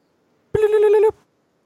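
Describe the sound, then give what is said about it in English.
A single short electronic alert tone, loud, buzzing with a rapid fluttering pulse for about half a second before cutting off: an iPhone timer alarm going off. “Weirdly enough, when you held it up, I knew it was like an iPhone like timer.”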